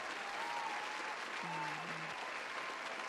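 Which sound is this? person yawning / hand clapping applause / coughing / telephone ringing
hand clapping applause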